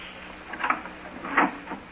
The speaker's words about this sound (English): Hey, I think I heard him getting up. Well, we'll open the door carefully and peek in. Now be quiet in case he's still asleep.